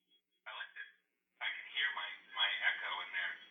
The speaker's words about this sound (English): They got to get these phones fixed. I like this. I can hear my echo in there.